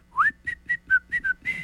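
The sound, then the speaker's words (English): A person whistles a short tune: a rising opening note, a quick run of clipped, bouncy notes, then one longer held note at the end. “Feel like Mickey on Steamboat Willie.”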